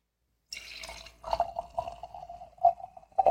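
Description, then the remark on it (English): A drink is poured into a glass, a steady splashing stream broken by a few louder glugs, with no one speaking. “So sit back, pour yourself a drink, and let's get started.”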